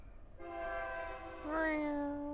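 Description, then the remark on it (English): A train horn blares loudly, one sustained harmonic blast that shifts pitch downward midway, suggesting a passing train, with low rumble underneath and no talking. “Please pause for the loudest train on earth.”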